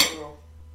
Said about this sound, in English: Also, love, try not to clatter the cutlery on the plate. That's all right, people know we're eating.